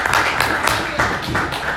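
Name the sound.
group clapping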